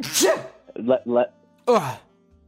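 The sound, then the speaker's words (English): A person sneezes once, loudly, a sharp breathy burst followed by a few short vocal sounds and a brief murmur of speech. “Hold on, I have to sneeze.”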